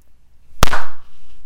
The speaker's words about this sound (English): have to do a clap?